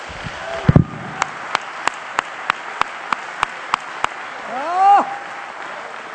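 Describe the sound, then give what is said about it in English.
A church audience claps hands unto the Lord in steady unison, about ten sharp, evenly spaced claps, opening with a louder burst and ending as a voice lets out a rising, falling whoop. “Somebody clap your hands unto the Lord, because you know you've got to have that.”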